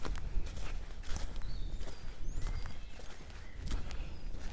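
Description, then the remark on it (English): Steady footsteps walking northeast at an even pace through woods in the middle of a sunny afternoon, each step a soft crunching thud, with faint, sparse birdsong in the background. “I can feel the sun on the back of my neck, and I'm walking towards my shadow. So I must be walking northeast.”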